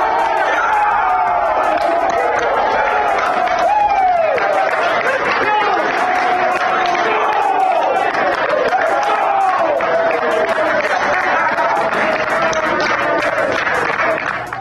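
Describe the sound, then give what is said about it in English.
Aggies team players erupt in sustained clapping and cheering as they find out they are in the NCAA tournament, with their coach's loud voice yelling and whooping above the steady applause throughout. “That's the Aggie players applauding, and that is Coach Craig Smith yelling and hollering as the Aggies find out they are in the NCAA tournament”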